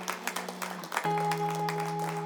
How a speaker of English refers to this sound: Yes, you can clap.